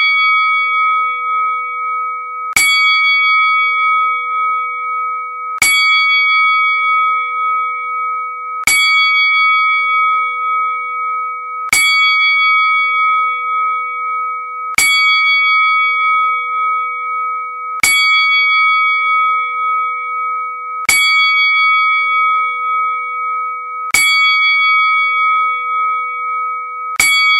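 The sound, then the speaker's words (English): A ceremonial ten-bell memorial salute for Paul 'Earthquake' Moore opening a radio tribute show rings in a slow, solemn count, each loud strike spaced about three seconds apart with a long sustained tone ringing between them; no one speaks. “At this time, we will start the show off with a moment of silence with the memorial, 10 bells, for the people champ.”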